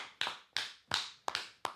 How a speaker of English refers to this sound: Don't let me clap by myself. I think there's a lot of people here if you do.